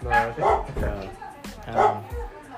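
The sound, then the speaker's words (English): Several dogs bark in quick, repeated bursts, loud, with short yips mixed in, while a person talks underneath the commotion. “Sorry about the dogs.”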